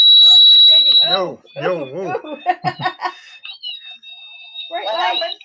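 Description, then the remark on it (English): A REM pod, set off when someone grabbed it, gives off a loud, steady high-pitched electronic tone for about a second, then people talk and laugh before a fainter, wavering squeal returns under their voices. “Was that your REM pod? Yeah, that squeaky, yeah. That was very high pitched.”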